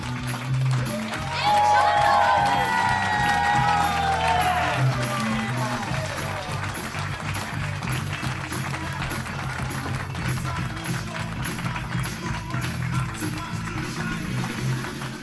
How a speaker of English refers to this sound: Friends, welcome to Comedy Republic, where the loose units are back. Please put your hands together.